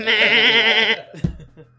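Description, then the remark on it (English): A scared goat, heard in the distance in the dark, lets out one loud, wavering bleat lasting nearly a second, harsh and almost human, like a person screaming, followed by a few faint rustling sounds before it trails off. “And in the distance of the dark, I think the troop just hears like a horrifying bleat of a goat.”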